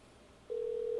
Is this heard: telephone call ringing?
yes